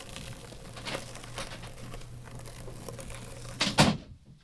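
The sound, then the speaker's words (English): Insects chewing through a block make a steady, scratchy crackle of tiny clicks over a low hum, building to a louder crunching burst just before the sound cuts off. “They're just like chewing right through that block.”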